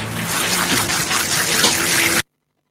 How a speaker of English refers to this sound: Water in the pebbles now, so. No, I mean, I don't know either. They glisten like semi-fresh stones when they're wet, and then when they dry, they look just like sugared almonds.